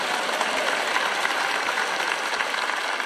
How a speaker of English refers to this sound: And we love that scripture and we clap for it, but listen to what it really says.